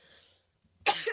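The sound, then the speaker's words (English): After a moment of near silence, a single sudden sneeze bursts out, loud and harsh with a noisy, breathy tail that lingers briefly. “Bless you again.”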